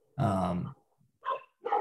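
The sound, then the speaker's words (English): A dog barks three times: a long, gruff first bark, a short pause, then two shorter barks in quick succession. No one speaks. “Oh, how about the dogs?”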